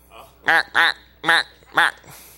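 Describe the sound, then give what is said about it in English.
A pet duck in a backyard quacks four times in loud, nasal bursts, two close pairs separated by a short pause, with no talking over it. “And he came back to grandma's backyard, and he spied her pet duck.”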